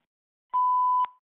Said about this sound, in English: 7 ABC Weather Center. Please leave your name and a brief message after the beep, and we'll get back to you as soon as we can.